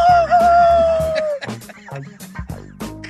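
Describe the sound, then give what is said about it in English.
A person imitates a rooster crow: a single drawn-out, loud call holding a long wavering note before breaking off into choppy, jumbled sounds. “Like a damn lost boy out here just crowing in the trees.”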